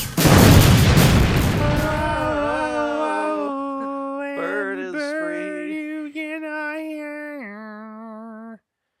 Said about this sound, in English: And then there's a hail of gunfire and the music cuts out.